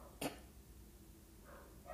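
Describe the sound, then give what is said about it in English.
A dog gives one short, sharp bark early on, then faint yips follow near the end, all fairly quiet against a low background hum with no one talking. “These dogs are crazy.”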